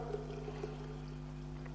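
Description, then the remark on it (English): Water pours steadily into a jar for a couple of seconds as it is filled up, a soft continuous splashing trickle that stays quiet and even, with a low steady hum beneath it and no voices. “In goes the water.”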